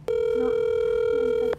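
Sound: telephone ringing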